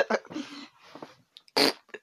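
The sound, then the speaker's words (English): Someone imitates a fart with a few buzzy, sputtering mouth noises, followed by a short, loud, breathy burst near the end. “was that you? I farted.”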